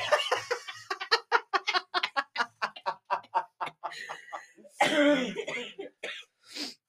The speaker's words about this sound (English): That smoker's cough, not the COVID. Not the Rona.